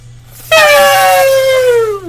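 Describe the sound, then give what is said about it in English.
A person mimics a giant elephant's trumpet: a single loud, brassy blare that bursts in suddenly, then slides steadily downward in pitch for over a second before trailing off, with no talking. “Elephant sounds at you.”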